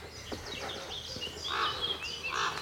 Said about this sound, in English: There are three. Three crows. Three ravens. All sitting on a branch, talking to each other. It's hilarious.